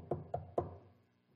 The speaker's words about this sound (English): Where does he go? Does he check into the local five-star hotel in a city? No. He goes to Mary, the mother of John Mark. He goes to her home and knocks on the door.